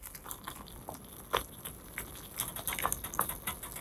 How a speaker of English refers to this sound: Maybe you heard more of the stove crackling